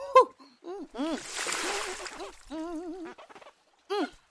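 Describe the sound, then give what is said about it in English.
River water splashes in a short burst of about a second as someone washes a sticky face, while a voice makes warbling, wordless sounds before and after it. “Damn, my face is sticky. Better wash off.”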